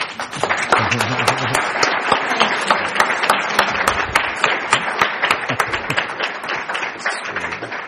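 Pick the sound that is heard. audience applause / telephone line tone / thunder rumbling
audience applause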